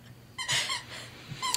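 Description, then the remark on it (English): A dog named Jude squeaks a squeaky toy: a few high, harmonic squeals in quick bursts, with a longer squeak in the middle and a short one at the end, over faint background noise. “Jude is squeaking a toy, and Catherine won't make him stop.”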